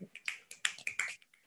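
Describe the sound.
Several quick, crisp finger snaps in an irregular flurry, fairly loud, with faint voice-like sound mixed in around them.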